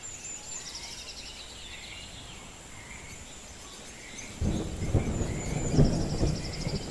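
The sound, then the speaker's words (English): Soft hiss of the first raindrops falling as a storm rolls in from the distance, with steady cricket chirring and occasional bird calls. Partway through, a deep rumble of thunder swells up and rolls on to the end. “In the distance, you can see a storm rolling in, but instead of feeling apprehensive, you welcome it with open arms as the first raindrops begin to fall.”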